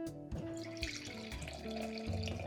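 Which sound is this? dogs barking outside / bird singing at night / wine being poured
wine being poured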